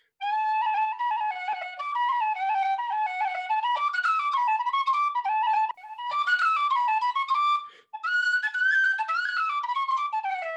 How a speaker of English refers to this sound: This is just a normal D whistle, just for comparison.